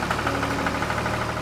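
A tractor engine runs steadily, a loud, low rumble with a fast rhythmic knocking pulse and no voices.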